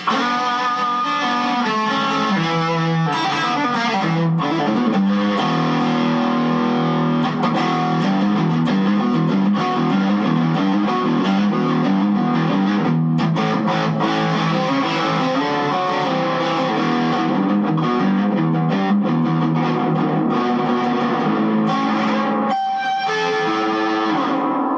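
An electric guitar with a warm, creamy boosted tone plays a steady run of sustained, overlapping notes for the whole stretch, thick-sounding, with no one speaking.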